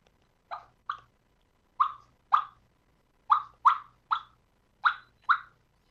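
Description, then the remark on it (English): Nine short, sharp turkey clucks made on a reed call by breathing bursts of air across the reeds, popping out in loose pairs and triplets with a bubbly, mid-pitched tone. They are fairly loud, with no talking. “And that's the bubble cluck.”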